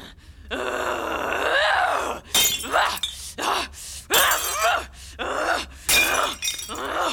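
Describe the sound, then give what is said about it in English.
A long, strained groan gives way to a series of loud crashes of a heavy cut glass decanter being smashed, several shattering bursts in quick succession with grunting in between. “If you need to have one of your rages, help yourself to my cut glass barware.”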